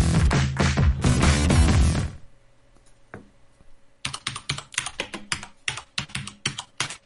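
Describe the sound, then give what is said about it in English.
Following a loud, dense burst of sound and a brief quiet pause, a computer keyboard is pounded hard and fast, with sharp, forceful keystrokes clattering for several seconds. “Sounds like he's like trying to, like the cockroach got under his keyboard and he's trying to kill it. He's trying to smash it.”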